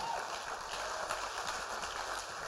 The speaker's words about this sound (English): Keep on clapping, people.